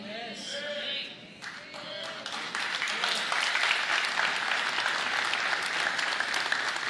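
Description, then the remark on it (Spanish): A crowd, asked for quiet opera-style or golf-style applause, breaks into applause that quickly swells into steady, dense clapping holding at an even level. Some faint voices and a higher tone are mixed in at the start before the clapping takes over. “Aplauso de ópera, vamos, aplauso de ópera.”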